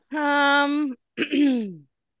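A throat clearing made in two voiced bursts, a steady held hum followed by a rougher, scratchy push that slides downward in pitch. It is close, fairly loud and heard alone without speech.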